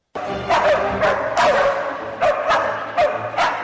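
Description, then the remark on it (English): Several live, trained dogs bark in quick, repeated bursts, loud, over sustained string and orchestral music as the Danish Chamber Orchestra performs the Hunting Symphony by Leopold Mozart. “Some orchestras use recordings of barking dogs for the piece, but here, live pooches rhapsodize right on cue.”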